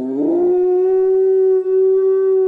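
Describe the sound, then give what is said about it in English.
A dog left alone at home lets out one long, mournful howl that rises at the start and then holds a steady, loud pitch for a couple of seconds, with no other sounds. “Now, do you feel guilty when you leave your dog alone at home?”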